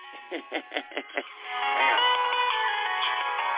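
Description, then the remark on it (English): A phone rings with an incoming crank call, its electronic ringtone a quick run of five rhythmic beeping pulses, then a sustained melodic tune that keeps playing, fairly loud, with no one talking. “So here come the crank calls now. Now I got the crank call.”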